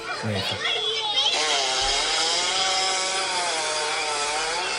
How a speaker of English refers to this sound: It's definitely not a fart. Hippo fart. Isn't that crazy? It sounds like a chainsaw, doesn't it? I feel like I was fooled.